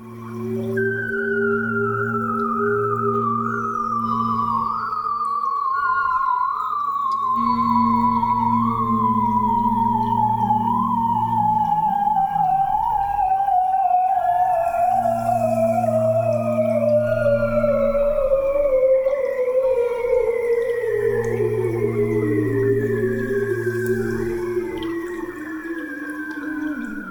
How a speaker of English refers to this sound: This is what the bearded seal sounds like underwater. I grabbed this audio off Wikipedia if you need to listen to it on repeat for a very long time. It's an incredible sound.